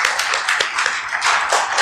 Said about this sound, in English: Beautiful day, beautiful voice, beautiful church. I have a round of applause for that. Come on now.